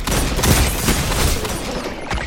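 Video game hand cannon gunfire: loud, heavy shots crack out every so often amid a dense, continuous barrage of battle noise, with no voices present.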